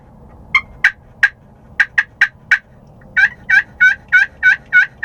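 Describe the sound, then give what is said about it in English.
A turkey friction call, held like a pencil at an angle, imitates sharp, separate clucks from quick pops, then a steady run of rolling, trilled purrs from slow drags across it. The notes are clear over a faint low rumble, with no talking. “And then you can just drag it across with slow. You get purrs. You can pop it real quick for some clucks.”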